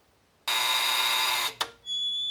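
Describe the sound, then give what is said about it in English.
A harsh electric buzz blares steadily for about a second, cuts out with a brief second burst, then a thinner high-pitched tone follows, like a door entry buzzer sounding. “Come on, buzz me in and...”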